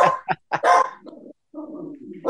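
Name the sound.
dog barking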